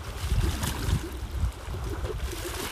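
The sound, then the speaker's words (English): Gentle lake water lapping against a dock at a lakeside in Alberta, Canada, a steady low sloshing with soft irregular splashes and a faint breezy hiss as the wind blows, continuous with no voices. “I just love the sound of the water lapping on the dock.”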